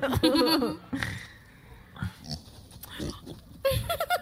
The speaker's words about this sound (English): Pig. In the river. In the river.